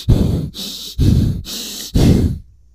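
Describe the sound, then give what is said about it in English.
A voice imitates heavy breathing right into the microphone: three loud, rasping breaths in a steady rhythm, each lasting about half a second, with brief pauses between and no talking. “you're breathing, like, right into the microphone.”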